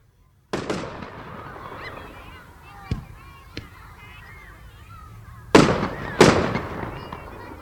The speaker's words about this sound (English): These fireworks change colour as they speed up into the distance, then explode with a loud bang of pure heavy metal that the whole neighbourhood can hear.